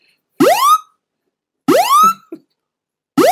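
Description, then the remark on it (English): A loud phone alarm blares on a plane in repeated rising electronic whoops, each sweeping sharply upward in pitch, in bursts of about half a second separated by short silences, with no voices. “Loud Alarm On The Plane”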